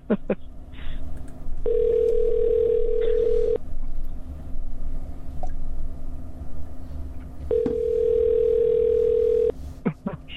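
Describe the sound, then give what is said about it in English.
A phone call rings out unanswered: two steady, mid-pitched ringback tones, each lasting about two seconds, separated by a long pause, over a low background hum. “How come they're answering? They're not answering.”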